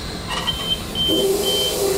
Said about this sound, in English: That's nothing to worry about, that beeping sound.